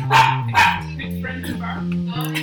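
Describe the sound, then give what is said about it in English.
Two sharp, loud barks from a dog in a bar in quick succession, followed by a murmur of voices continuing in the background. “Yep, there is a dog. There is a dog in the bar.”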